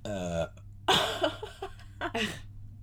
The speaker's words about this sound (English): Hold on, I'm gonna burp.